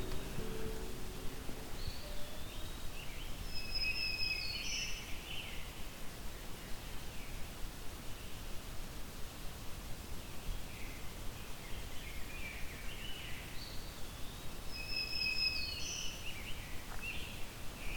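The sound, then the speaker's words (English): Faint songs of a black-throated green warbler, eastern wood-pewee, rose-breasted grosbeak and northern cardinal come in brief phrases, about twice, over a steady rustling hiss. No one speaks. “I'm hearing black-throated green warbler, eastern woodpewee. It's rose-breasted grosbeak and northern cardinal.”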